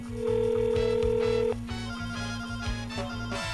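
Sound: telephone ringing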